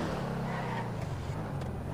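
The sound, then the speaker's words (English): A loud video game car engine drones steadily, its low hum holding an even pitch with slight rises as it revs, filling the whole stretch with no talking. “Oh my god, my car is gonna... My insurance.”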